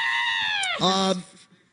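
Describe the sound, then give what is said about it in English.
A human voice imitates a bird call as a birthday greeting: a high, sustained warbling tone that abruptly drops to a lower, louder wavering note, lasting about a second before fading. “Hey, he gets a birthday bird call.”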